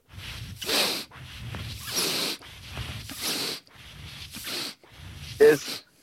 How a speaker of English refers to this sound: the whole concept is being able to store the air in your cheek and being able to push out the air with your cheek muscles at the same time as you're sniffing in. Sniffing, yeah.